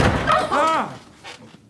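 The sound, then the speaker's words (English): A door bursts open without a knock with a sudden loud bang, quickly overlapped by a startled vocal outburst, then a softer rustle as things settle. “You just scared the shit out of all three of us? You don't knock anymore?”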